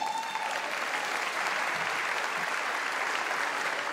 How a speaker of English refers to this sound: The people clapping are the ones who work there.